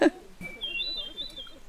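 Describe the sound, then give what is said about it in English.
A hermit thrush sings outdoors in Nova Scotia: a thin, high, sustained song rises faintly, a pure fluting tone that wavers slightly in pitch, heard over soft outdoor background hum. “And there's a hermit thrush.”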